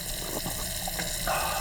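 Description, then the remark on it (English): Steady rush of running water, like a tap or hose flowing continuously, fairly loud, with a slight surge in brightness near the end. No voices. “Who the hell is stealing my water?”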